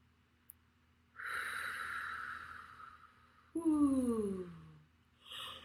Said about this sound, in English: I feel a yawn. If you feel a yawn, that's a good sign. That means you're releasing the higher vibe energy.